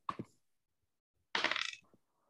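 A ten-sided die (d10) is rolled: a sharp initial clack, a brief pause, then a louder burst of rapid rattling clicks as it tumbles across a hard surface and settles.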